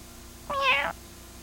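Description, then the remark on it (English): A single clear meow from Kitty, the cat in South Park, rising and falling over about half a second, moderately loud against a quiet background with no talking. “Well, then, I know a certain kitty who's sleeping with Mommy tonight.”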